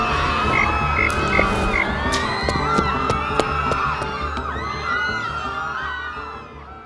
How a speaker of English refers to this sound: Say hello to my little friend. Let's talk about it. Frog!